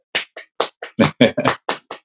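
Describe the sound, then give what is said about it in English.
Hands clap about nine times in a brisk, fairly steady rhythm, each clap a loud, sharp slap with a full, bright smack. There is no talking over it. “not a golf clap, a real clap.”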